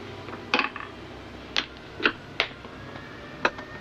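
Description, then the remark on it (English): A pencil taps on a desk: five sharp, light clicks at an uneven, unhurried pace, each a crisp knock standing out against a faint background hush, with no voices. “And stop tapping that pencil.”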